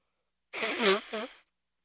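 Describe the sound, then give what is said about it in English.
A person blows their nose in a short, honking burst lasting about a second, with a wavering nasal tone that rises and dips over two or three pulses before stopping. No one speaks. “Now you're going to hear me blow my nose.”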